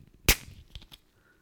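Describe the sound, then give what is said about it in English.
A sharp, loud pop opens a fizzy drink, followed by a brief hiss and a few faint, irregular crackles of bubbles picked up by the microphone, with no voices. “I could hear the bubbles crackling through my ears in the microphone.”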